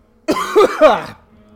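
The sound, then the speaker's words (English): A short burst of harsh coughing after choking on a drink: two or three rough, rapid coughs run together, loud and raspy, then trailing off into quiet. “Sorry, I just choked on my drink. That's not my coronavirus cough.”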